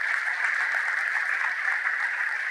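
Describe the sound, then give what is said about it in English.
A crowd applauds a group of women speakers at an event, many hands clapping in a dense, even wash of sound that holds at a constant, fairly loud level throughout, with no voices. “Can you please give them a big applause?”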